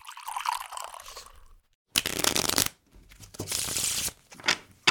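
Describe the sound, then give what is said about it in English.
Playing cards being shuffled: a soft riffle, then two louder bursts of rapid flapping and ruffling, with short pauses between, ending in a couple of sharp taps as the deck is squared. “Cut the deck. Deal.”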